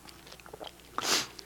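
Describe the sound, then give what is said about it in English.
A quiet sip from a drink: a few small wet mouth clicks, then a short airy slurp near the end, with no talking. “Turn there while I get a sip, or look at the screen.”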